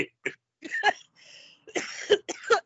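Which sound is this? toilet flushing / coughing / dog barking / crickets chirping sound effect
coughing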